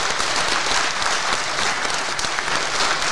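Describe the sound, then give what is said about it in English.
An audience claps in a steady, dense round of applause for themselves at the end of a recording, many hands blending into a continuous wash of noise that stays loud and even throughout. “But first of all, give yourself a round of applause. You've been a fantastic audience.”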